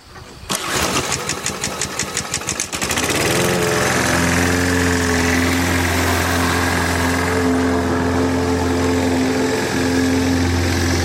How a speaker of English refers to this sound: Oh yeah, there he is now, out with his mower. It's before 9 o'clock. Does he not realise it's a Sunday?